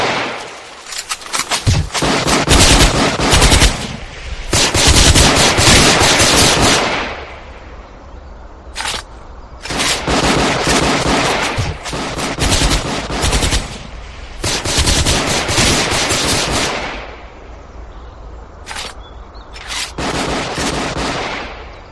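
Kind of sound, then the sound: sound effect, gunfire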